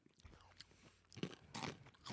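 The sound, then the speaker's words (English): Crunching of green, salted, guacamole-flavored tortilla chips, a few sharp bites followed by louder, drawn-out crackly chewing bursts, with no talking. “Good crunch. I like these a lot.”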